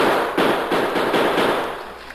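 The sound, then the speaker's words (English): A rapid series of about four loud gunshots fired at a steady pace into the bottom of a water barrel to let the water run out, each a sharp crack ringing over a constant hiss, with no voices. “The few more bullet holes in the bottom of the barrel will let the water run out faster.”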